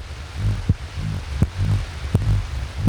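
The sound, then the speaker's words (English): A deep, steady heartbeat pumps in a regular rhythm, each low thud landing about every three-quarters of a second over a soft rumbling hum, with no voices. “It's the Heartbeat Disco. And it's open 24 hours a day, and the action's always pumping.”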